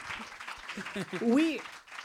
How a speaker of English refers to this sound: Yeah, I think that deserves a clap.